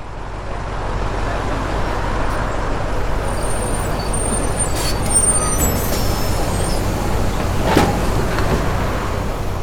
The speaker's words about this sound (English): As we were stepping on to the rumbling bus, waiting to take its passengers north,